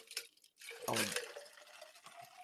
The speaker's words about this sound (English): I'm sorry, I'm trying to drink plenty of water. I didn't know it was gonna be that loud